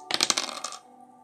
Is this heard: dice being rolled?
yes